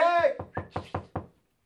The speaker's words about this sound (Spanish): Pero hay una condición. Yo tengo que escuchar que están tocando la puerta para yo tomar la decisión si abro o no abro.